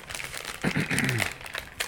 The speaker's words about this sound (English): That is a tough sticker, man. It's got some plastic in it.